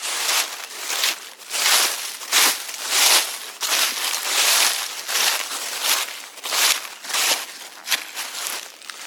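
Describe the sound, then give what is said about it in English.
Steady footsteps crunch through dry autumn leaves in the woods, each step a crisp, crackling burst of rustle in an even walking rhythm, fairly loud and continuous with no voices. “Okay, how about you and I put on our jackets and we step outside into the woods, walking over the crunchy leaves, and have a chat about essential oils that are great to use for a cozy home in the autumn.”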